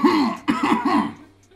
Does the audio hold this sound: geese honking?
no